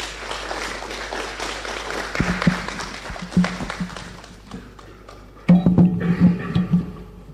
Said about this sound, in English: A round of applause once again for Dr. Esther Kowadwaji.